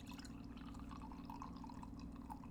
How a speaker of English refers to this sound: Listen to that pour.